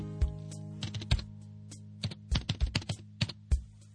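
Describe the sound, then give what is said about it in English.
Fingers tapping on computer keyboard keys in irregular bursts of sharp clicks, fairly loud over a steady low hum, with brief pauses between clusters of keystrokes. “And every time I watched you tapping on my keys, I pretended I could feel it.”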